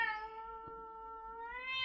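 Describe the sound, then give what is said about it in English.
A pet cat named Kitty lets out one long, drawn-out angry yowl, fairly loud, its pitch wavering and rising toward the end, with no voices over it. “Right, Kitty? Kitty's very mad about that.”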